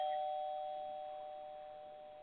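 A single electronic doorbell chime rings out with steady, clear tones that slowly fade over a couple of seconds, heard alone with no talking.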